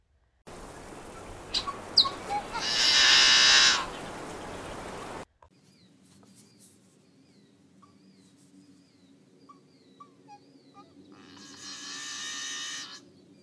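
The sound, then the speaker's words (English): Yellow-headed blackbird snarl songs, heard twice: a few sharp ticking notes followed by a loud, harsh, buzzing snarl, the first against a rushing background, the second clearer after a quiet stretch. “Yellow-headed blackbirds have two types of song, a snarl song, which is one to two ticking notes, followed by the snarl”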